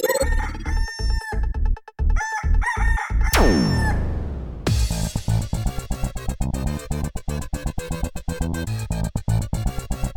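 A rooster crows loudly in choppy, repeated bursts, then a long falling cry gives way to a dense, continuous stretch of crowing with no one talking.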